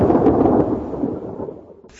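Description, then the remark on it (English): A loud thunder crack sound effect, played to introduce a lightning round, rolls into a deep, rumbling boom that gradually fades over a couple of seconds, with no voices present. “Lightning! Lightning round! Lightning!”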